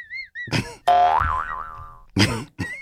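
A loud, springy cartoon boing twangs out and wobbles as it fades over about a second, with short bursts of other zany effects just before and after.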